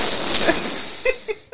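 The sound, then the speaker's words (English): A person imitates their dog sniffing deeply at the crack of a bathroom door: a long, steady, breathy inhaled hiss lasting over a second, followed by two short, faint voiced snuffles before it cuts off. “She puts her nose in the crack of the door, yeah. And she's all... Like, she does a deep sniff.”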